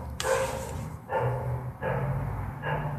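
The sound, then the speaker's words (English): A dog in someone else's apartment across the hall barks repeatedly, about four sharp, drawn-out barks in quick succession, sounding somewhat muffled as if coming through a wall, with no one talking. “Can y'all hear that fucking dog?”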